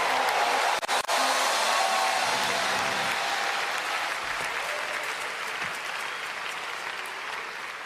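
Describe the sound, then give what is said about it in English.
A church audience claps and applauds together in praise of the Lord in a steady, dense wash of hand claps, loud at first and gradually easing off over several seconds, with no clear talking. “If that's you, clap your hands and praise the Lord.”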